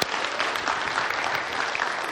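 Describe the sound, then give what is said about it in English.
An audience claps steadily for a man standing among them, a dense wash of many hands applauding at an even level from start to finish with no voices standing out. “We'll clap for you.”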